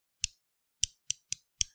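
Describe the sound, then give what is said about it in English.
Five sharp, hard clacks of dice being knocked together by a person, fairly quiet, coming at an uneven pace with brief silences between them and no voices. “Oh, is it for the dice clacking I was making?”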